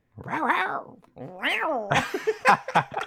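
Two drawn-out, rising-and-falling cat meows sound one after the other, followed by a burst of choppy, breathy noises like laughter.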